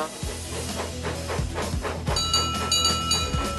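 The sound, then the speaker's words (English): Duck the steam engine, coupled to the coach Hannah, chugs slowly out of a siding, its steady, rhythmic puffs of steam hissing over a low rumbling drone, with a bright ringing tone joining near the end. “And they puffed slowly out of the siding.”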